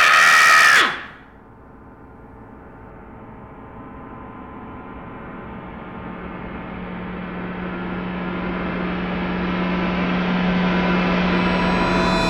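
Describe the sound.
A loud, piercing vocal shriek imitating a heavy metal scream bursts out for about a second, then gives way to a steady droning buzz with a low hum that slowly swells.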